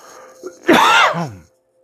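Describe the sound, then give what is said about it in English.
A single loud, harsh cough burst with a rough throat-clearing rasp, lasting under a second after a brief faint catch, then silence. “I need to cough hard.”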